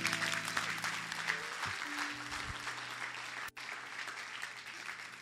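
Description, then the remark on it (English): An audience claps for the Lord Jesus, breaking into sustained, dense applause, many hands clapping together in a steady wash of sound that holds for several seconds with only a brief dip near the end. “Clap for the Lord Jesus.”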